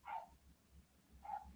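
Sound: dog barking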